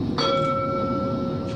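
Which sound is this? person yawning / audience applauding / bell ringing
bell ringing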